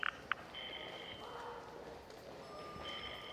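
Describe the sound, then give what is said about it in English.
Two quick keypad beeps as a courtesy phone is dialed to call a shipping dock, followed by faint, steady electronic ringing tones over a low background hiss, with no one speaking. “I'll use the courtesy phone here.”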